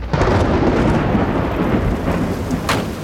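Steady, dense rain roars with a deep rumble like thunder underneath, loud and continuous throughout, with no voices.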